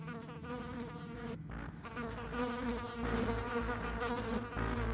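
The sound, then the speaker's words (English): Flies from a black mass of insects circling a man buzz in a thick, droning hum, steady apart from a brief break early on, with constant tapping as they collide into his clothing. The whirring swells slightly louder toward the end, with no voices. “The constant tapping of the flies colliding into his clothing gave him the willies.”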